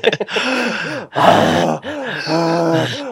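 A voice imitates deep, heavy breathing: three long, loud, groaning breaths, each about a second, with a rasping voiced tone whose pitch rises and falls. No words are spoken.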